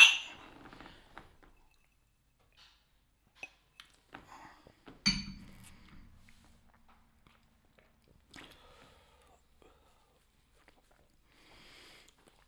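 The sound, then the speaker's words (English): Glasses clink together in a quick toast as people taste a Wild Turkey product, followed by quiet sipping, a second knock of glass and small scattered clicks, with no talking. “Let's give it a taste. Cheers. Cheers.”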